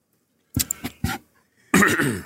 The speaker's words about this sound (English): Him coughing was the segue. That was just to fill the silence.